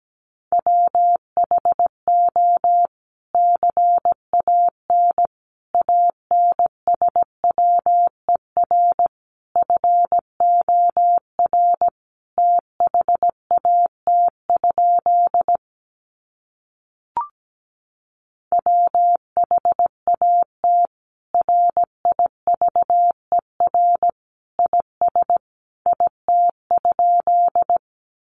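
Morse code tones at about 17 words per minute sending practice sentences built from the top 300 words: a single steady mid-pitched beep keyed into rapid dots and dashes, with one short pause partway through and no voices.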